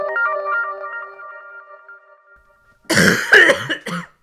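human body sound, coughing into the microphone

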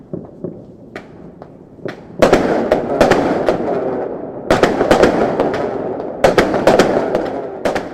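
impact, firecrackers exploding

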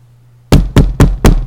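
household object, knocking on a door

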